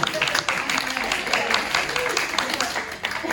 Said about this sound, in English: Woo! Give them a clap for that.